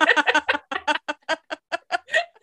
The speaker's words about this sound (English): My cat is clearly upset by it. You can hear him.